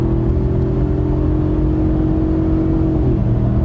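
A loud 7.3 diesel truck engine drones steadily under full-throttle acceleration, then its pitch dips briefly as it shifts gears near the end before pulling again. No voices are heard.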